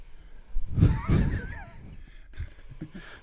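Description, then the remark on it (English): Loud breathing right against a microphone, a couple of heavy sigh-like exhales and puffs of air, followed by quieter breaths and faint background voices. “All right, I can't take listening to him breathing in these headphones anymore.”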